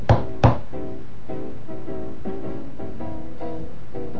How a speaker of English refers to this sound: And so he shouldered his axe and moved forward, right to the doorway. And he knocked on it with his knuckles 3 times.